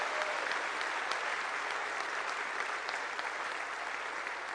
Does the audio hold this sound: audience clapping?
yes